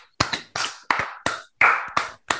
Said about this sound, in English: Yeah, clap for yourself. Yeah. There's only two hands, so I thought I'd join.